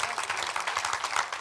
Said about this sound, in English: But as Pastor Mark started, let's give Pastor Mark a big hand clap, can you?